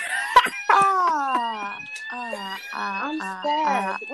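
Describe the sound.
A shrill fire alarm sounds in repeated wavering bursts, its pitch stepping and sliding, fairly loud, with a voice heard alongside it; it goes off while the stove is being cleaned.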